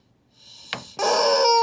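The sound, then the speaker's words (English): A rubber chicken dog chew toy, squeezed as hard as possible, lets out a strained, rising squawk, a quick clicky squeeze, then a loud, sustained, reedy squeal, with no talking. “this is the fucking sound this chicken makes”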